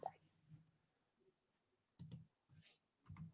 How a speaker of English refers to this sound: I'm just typing down.